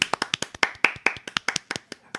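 Brief applause: quick, sharp claps in a fairly steady rhythm, about nine per second, moderately loud with no voices over them.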